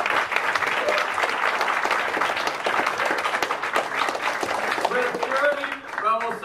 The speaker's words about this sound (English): let's give the brothers another round of applause right there.